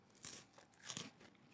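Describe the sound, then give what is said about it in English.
Crisp crunching from someone chewing crackers and cured meat from a charcuterie board, two bursts of loud bites and chomps with brief pauses between, no talking. “You eating on the pot? Do you want me to hit your cough button?”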